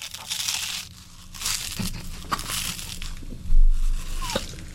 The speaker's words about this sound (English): Is he going to get the last bite in? Crunch, crunch, crunch. I think he's going to make it.